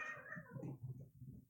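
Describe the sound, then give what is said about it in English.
A single drawn-out meow from a cat that runs by, sliding downward in pitch and trailing off into a low, growly tail, fairly quiet, with no talking. “A cat just ran by me.”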